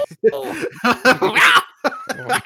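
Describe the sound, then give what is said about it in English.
A single sharp, breathy sneeze bursts out midway as the person tries to get away from the microphone, surrounded by people talking and a bit of laughter before and after. “Oh, bless you. Thanks.”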